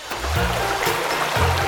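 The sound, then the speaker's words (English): Water rushes and gurgles steadily for a couple of seconds, a continuous flow with a hollow, enclosed quality, as sewage from a flushed toilet runs down a pipe underground. No voices are present. “When you flush the toilet, the water, poop, and pee, what we call sewage, goes down a pipe and flows underground to join other pipes with even more sewage, which means more poop and pee.”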